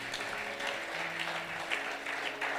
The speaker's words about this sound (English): Somebody give a hand clap unto the Lord.